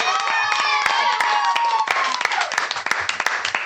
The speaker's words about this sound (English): Let's give a big round of applause